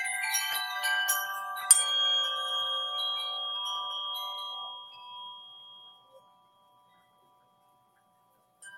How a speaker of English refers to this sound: Okay, let's just. Let me ding, let me ring my bell.